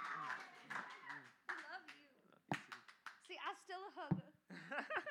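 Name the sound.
audience clapping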